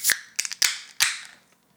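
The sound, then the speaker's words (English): A can of hazy rye IPA beer cracks open: a few sharp metallic clicks followed by a bright hiss of escaping fizz that trails off into quiet, with no talking. “So grab your beer and grab your glass and let's open her up.”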